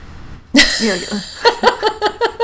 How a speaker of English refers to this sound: Well, the one nice thing about a summer cold, at least here in St. Louis where it's hot, is you get a little chill when you sneeze.